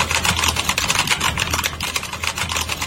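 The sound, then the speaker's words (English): Rapid, steady clacking of a mechanical keyboard with Cherry switches, keys struck in a quick continuous flurry, fairly loud, with no voices. “Here's the cherry sounds. Listen to this.”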